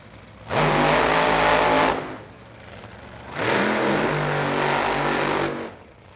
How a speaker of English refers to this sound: So while we listen to that gorgeous roar of two nitro powered top fuel cars, you'll notice that the burnouts don't all the way sound the same. Characteristically they do, but not every team ramps up to the same RPM.